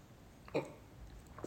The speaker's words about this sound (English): Another sip of tea, hang on.